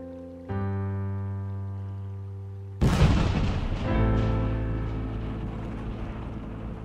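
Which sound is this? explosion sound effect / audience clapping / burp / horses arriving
explosion sound effect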